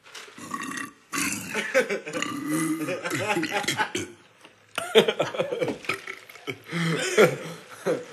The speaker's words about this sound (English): you told me to burp. You ready? Or you still got burp?